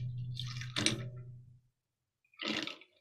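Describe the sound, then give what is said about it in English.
A drink is given a dirty pour with a little extra ice: liquid pours and splashes into a glass of ice, a steady pour with a sharp rattling burst, then a short second splash after a quiet pause. No one speaks. “I'm gonna do a dirty pour, which means I'm gonna have a little bit of extra ice in here.”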